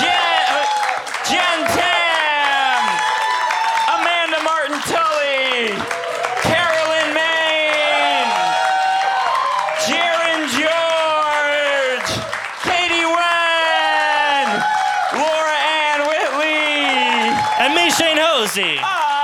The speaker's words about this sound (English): Alright, we're gonna try to do this quick. Give it up for everyone you've seen today.